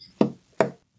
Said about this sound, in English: Ghostslinger, you seem to remember telling them something about a secret knock. The secret knock, Ghostslinger. She knocks on the door.